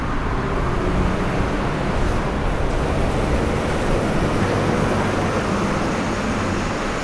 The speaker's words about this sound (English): And there's a lot of traffic, obviously.